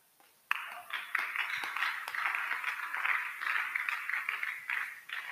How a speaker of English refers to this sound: Those who are clapping, they are getting it.